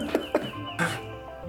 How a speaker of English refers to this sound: There is the loudest bird outside of my window. It is just chirping, chirping, chirping away.